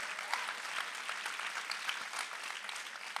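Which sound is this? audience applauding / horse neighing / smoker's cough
audience applauding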